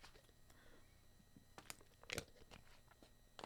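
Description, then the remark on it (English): Someone sips water: quiet, wet mouth clicks and a soft swallow over a few seconds, with no talking. “Let me get a sip of water.”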